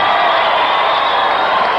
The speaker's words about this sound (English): All right, what a match, a jam-packed capacity crowd.